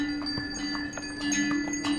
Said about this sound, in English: Donkey trains. I remember the recurring sound of bells from the donkey trains carrying various loads along the trail.